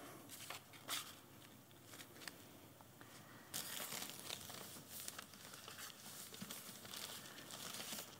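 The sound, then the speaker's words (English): Continuous crinkling and rustling of a bit of paper with words written on it being crumpled and unfolded, with sharp crackly bursts throughout and a slightly louder stretch partway through, no voices. “Our next bit of paper says Alpha and Omega.”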